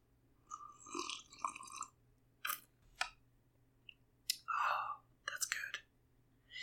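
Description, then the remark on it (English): Several noisy slurping sips of tea in quick succession, each a short airy burst with a wet, hissing edge, separated by brief pauses amid otherwise quiet. “Let's record this tea sipping sound here.”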